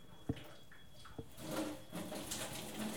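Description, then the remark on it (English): Two short clinks of crockery, then a man pours a steady stream of tea splashing into a cup, moderately loud, with no voices. “He's pouring a cup of tea. Listen to this.”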